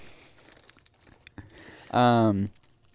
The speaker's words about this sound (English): I'm eating these Fritos chili cheese corn chips.